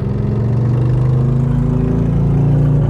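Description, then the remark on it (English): A big motorcycle engine rumbles loudly and steadily close by, its low harmonic drone shifting slightly in pitch as it passes, with no voices over it. “Got a big motorcycle here coming by me.”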